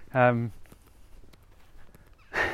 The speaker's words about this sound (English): Oh my God, it's like Dog Walkers Central. There's fucking dogs everywhere. As if on cue, I hope that came up on the mic.